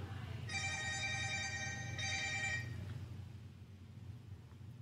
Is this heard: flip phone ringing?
yes